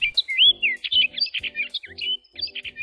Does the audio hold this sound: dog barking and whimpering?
no